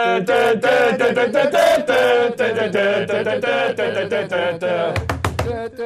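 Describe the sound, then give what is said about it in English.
Several voices sing the Big Match theme tune together loudly, followed near the end by a short burst of sharp rhythmic drumming on a tabletop. “Shouldn't we sing the big match theme?”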